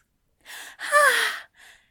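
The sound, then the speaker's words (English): A person gives a sharp, breathy gasp, a brief intake followed by a longer voiced catch of breath that trails off, then a faint short exhale. Fairly loud, with no talking. “Aziraphale gasped, his eyes widening and his teacup quivering in his hand”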